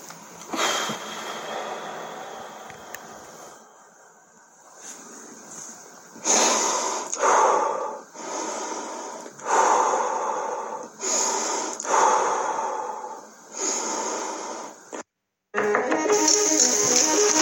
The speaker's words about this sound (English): Okay, you hear the breathing? He's going through it now. It just came out of nowhere. Listen.